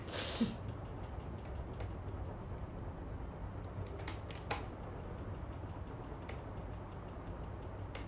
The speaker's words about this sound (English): Sneeze again, I dare you. Come on, sneeze.